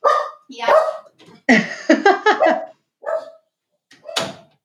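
dogs barking

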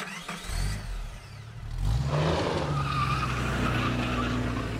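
car skidding

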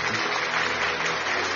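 audience clapping hands

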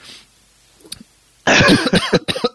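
cough

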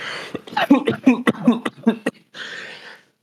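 coughing fit

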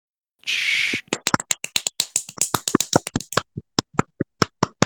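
applause

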